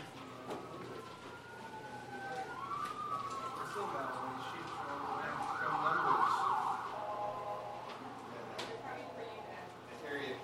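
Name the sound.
ambulance siren passing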